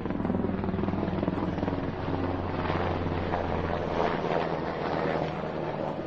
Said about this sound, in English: What is this now? That's menacing. The jackbooted helicopters. Jeez Louise. Wow. I don't even see. Oh, there it is. It's so loud.